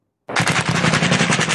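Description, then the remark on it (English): Sustained burst of automatic gunfire during an overnight U.S. special forces raid in northwest Syria targeting ISIS leader Abu Ibrahim al-Hashimi al-Qureshi, a rapid, loud stream of cracking shots that starts abruptly and continues without pause, with no voices. “A U.S. raid shattering the overnight hours in northwest Syria.”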